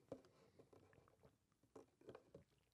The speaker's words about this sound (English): Hang on as I take a sip of my delicious coffee.